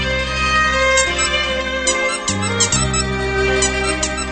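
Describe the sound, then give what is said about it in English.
Violin music plays on its own, with sustained bowed notes, bright harmonics and a few quick note changes. Steady and fairly loud throughout, with no talking. It is a violin version of dog father Joey Villani's wedding song, which has words in the original. “That noise has become synonymous with dog father Joey Villani.”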